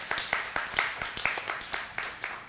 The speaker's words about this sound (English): We love this guy. This guy, you can clap for this guy. We gave it up for everybody else. We might as well give it up for this guy.